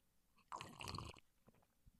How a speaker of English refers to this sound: I like coffee when I sip it like this.